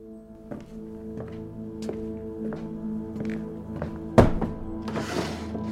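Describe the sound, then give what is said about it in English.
A series of wooden knocks and thunks, then one loud bang and a scraping slide as drawers and cabinets are yanked open during a search, heard over a steady low hum. “I started tearing things apart, opening drawers and cabinets.”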